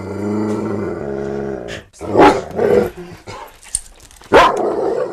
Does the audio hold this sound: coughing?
no